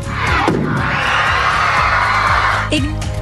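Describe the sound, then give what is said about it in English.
A group of children scream together in a science class, a loud, sustained high-pitched roar of many voices that swells and holds for about two seconds before breaking off into scattered shouts. “Well, when was the last time you saw children scream in science class?”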